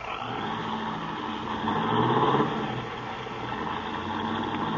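A car with faulty brakes, driven by Mr. Benson, runs steadily, swelling louder for a moment as it revs and accelerates, then settling back into a continuous drone as it pulls away in a hurry.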